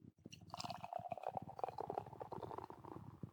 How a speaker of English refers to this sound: Can you tell I didn't open the tab all the way on that pour? If you're an expert. Glug glug effect. This is a Crooked Lane Brewery. Videlles Bra. A cool style beer.